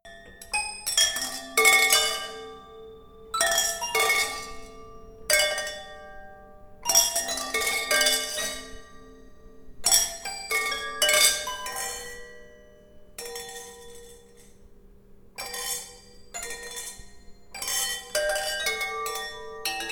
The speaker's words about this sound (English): So, of course, the next day I took all my parents' stemware down into the basement and made my first glass instrument.